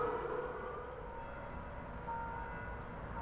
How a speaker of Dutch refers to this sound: Hey jongens, de eerste maandag van de maand. Yeah. Ja. Nou, ze doen het hoor, de sirenes. Ja. Ja, ze werken.